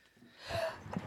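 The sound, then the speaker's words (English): A single quick sneeze: a soft breathy intake building into a sharp, hissing burst, then a short trailing exhale. Fairly quiet, with no talking. “Bless you, girl.”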